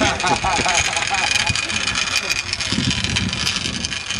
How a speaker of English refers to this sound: Sounds like there's a loose scooter.